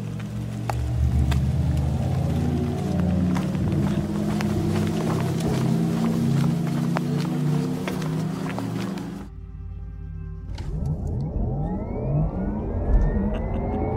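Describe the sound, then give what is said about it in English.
A Porsche electric car's mandatory low-speed pedestrian warning hum drones steadily with layered tones. After a brief dip it shifts into a smooth, synthetic whir that sweeps upward in pitch as if accelerating. “You might hear a little hum, and that is its low-speed mandatory noise.”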